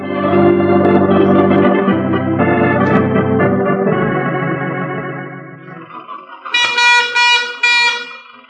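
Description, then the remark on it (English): An old motor car's horn honks loudly over a rumbling engine, then a brighter, higher series of toots sounds near the end, with no talking. “I never realized the utter imbecility of barnyard fowl until I started to drive a car.”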